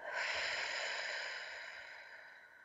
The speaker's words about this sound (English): Take a deep breath in through your nose. Out through your mouth like through a straw.